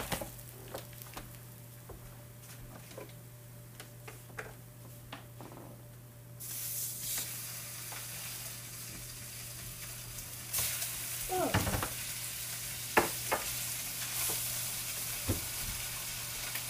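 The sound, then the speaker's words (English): Spam sizzles and crackles in a hot pan, a steady hiss that grows louder partway through, dotted with sharp pops and spits and a low constant hum underneath. “I'm very sorry if this pops you.”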